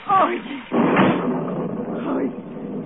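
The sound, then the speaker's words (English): A door is shut with a single solid thud, after being unlocked to let in someone soaked by the rain, followed by a steady wash of rustling, rain-like noise that lingers for a couple of seconds. “I'm going to unlock the door”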